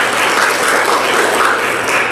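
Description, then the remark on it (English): An audience breaks into steady, dense applause, many hands clapping at once in a loud, even wash of sound that holds for a couple of seconds with no voices, giving praise to God. “Give him praise for that.”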